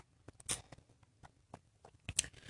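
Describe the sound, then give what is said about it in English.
Someone takes quiet sips of a detox drink: a couple of short slurping bursts with small wet mouth clicks and swallowing noises in between, no talking. “Let me get my sip on again.”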